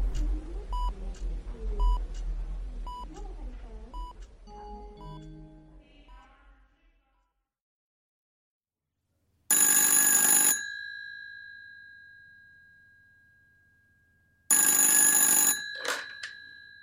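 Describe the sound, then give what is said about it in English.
A run of short electronic beeps like a phone being dialed, then a pause and two loud, separate bursts of a ringing telephone bell, each fading slowly. No voices. “I'm gonna go call everybody.”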